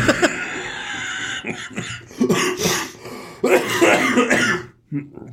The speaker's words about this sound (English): I've got a comedy cough. It's just a laughing cough.